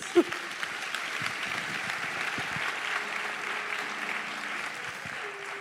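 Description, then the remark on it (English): An audience breaks into a steady round of applause, a dense wash of many hands clapping at an even level throughout, with a brief sharp tap at the start and faint tonal murmurs underneath. “Round of applause.”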